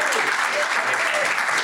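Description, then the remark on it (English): An audience claps in a steady round of applause for a guest being brought up, a dense, even wash of many hands beating together at a consistent loudness throughout. “a round of applause for all of his hard work making this year and the previous years happen.”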